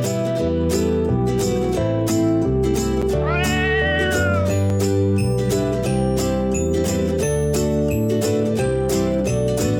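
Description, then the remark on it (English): A drawn-out, wavering cat meow rises over loud, steady, beat-driven music, with more meow-like cries woven into the busy instrumental track. “Are you ready to become cat?”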